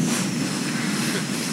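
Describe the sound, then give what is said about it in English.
A volunteer called up on stage imitates wind with a steady, breathy whooshing hiss that holds at an even level for about a second and a half, with no words spoken. “You're my wind man. Here, give us your best wind sound.”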